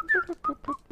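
A person whistles a brief tune of three or four quick notes, clear, with no talking.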